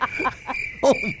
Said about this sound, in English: A lot of crickets there, too, apparently.